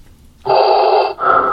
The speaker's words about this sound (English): I'm pretty sure the Vader breathing sound is trademarked by Lucasfilm, so I hope we don't get sued.